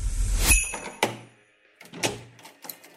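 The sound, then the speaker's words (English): A stuck door is shoved and thumped several times, with heavy knocks at irregular intervals, a rattle and low rumble, and no voices. “What is wrong with this door?”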